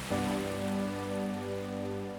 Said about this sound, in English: Breathe deeply as you allow the sounds of the magnificent ocean to wash all over you. Can you hear the gentle sounds of those beautiful waves? So peaceful.